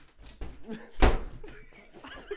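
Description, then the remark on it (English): A door slams shut with one loud, heavy bang, surrounded by a few softer knocks and rustles before and after. “Who slams the door like that?”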